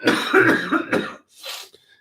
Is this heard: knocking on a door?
no